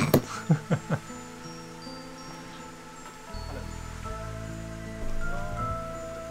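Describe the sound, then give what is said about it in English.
Steady rain hisses softly in the background beneath sustained musical tones, with a few plucked notes near the start and a low droning swell joining partway through. “And the rain. Quite a lot of ambient going on.”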